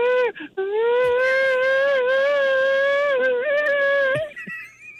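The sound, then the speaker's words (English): A person imitates the whale call from Free Willy, when the whale jumps over the kid, with one long, sustained wailing tone lasting about four seconds, rich in harmonics, wavering slightly in pitch and dipping at the end, after a brief opening hiccup. “let's hear your whale.”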